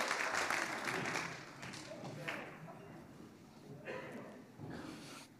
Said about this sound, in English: Amen. Give the Lord a clap. Please take a seat.